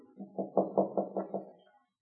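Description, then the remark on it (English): A quick series of about six firm knocks on a room door, evenly spaced, then silence. No one speaks. “Well, there's no answer. Knock again”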